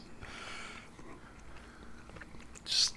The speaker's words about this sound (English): Just chewing that bread. Really thinking about it, huh?